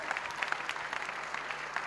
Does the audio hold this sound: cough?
no